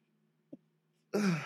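One sneeze: a quick, faint catch of breath, a short pause, then a sudden loud explosive burst that holds briefly to the end, with no talking around it.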